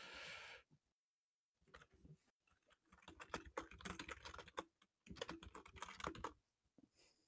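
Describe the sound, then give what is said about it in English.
Rapid, uneven clatter of keys on a computer keyboard, fairly loud, with a brief pause near the start and steady bursts of typing after it. No one talks. “I don't know if he's typing something up.”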